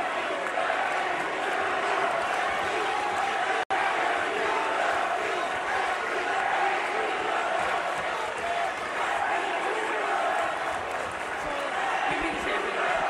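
A large indoor arena crowd chants and roars in a steady, dense wash of voices, holding at a constant level for the whole stretch with no single voice standing out.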